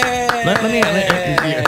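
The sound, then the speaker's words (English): One person claps steadily, about six sharp claps in a quick, even rhythm, while a drawn-out voice with a wavering pitch carries on underneath without clear words. “One of us is clapping, the other is not, and I'm just giving you a dose of reality.”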